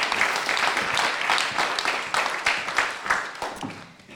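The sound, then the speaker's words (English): A crowd claps for a woman who came up to share, in a steady, dense wash of applause that holds loud for a few seconds, then gradually thins and fades toward the end. “Let's give her another round of applause for coming up.”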